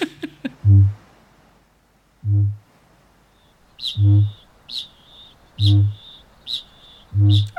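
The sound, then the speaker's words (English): Deep, resonant booms of kākāpō, small, chunky, round, fluffy birds, pulse at a steady rhythm, roughly every second and a half, with thin high-pitched chings and chirps sounding between them in the second half. “Chunky was a word that was invented for kākāpō, really.”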